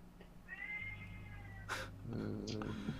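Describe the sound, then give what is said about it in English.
A cat meows insistently: one long, drawn-out wavering cry, then a shorter, sharper call a moment later, over a low background hum and some clatter. “What are you doing to that poor cat?”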